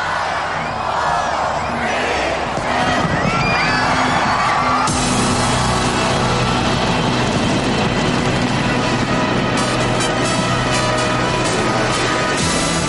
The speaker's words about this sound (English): And Australia's welcomed in the new year with fireworks over Sydney Harbour Bridge.